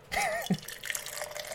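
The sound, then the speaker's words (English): Beer pours into a glass with a gurgling, bubbly splash at the start, then settles into a steady fizzing trickle as the glass fills; a lightly hazy, unfiltered German-style Granary Keller Beer from TF Brewing Company. Brief and fairly quiet, with no talking. “Gonna pop my top? Oh, thank God. My top. And the pour.”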